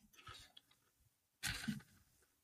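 Crunchy chewing of cheesy tortilla chips by a person eating, a few soft crunches followed by a louder burst of crisp munching near the middle, then quieting down.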